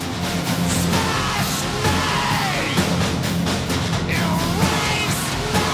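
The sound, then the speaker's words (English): A dense, unrelenting wall of harsh distorted noise, loud and steady throughout, with strained screaming vocals buried in and smeared across the roar. “Those are the screams of agony from hell, folks.”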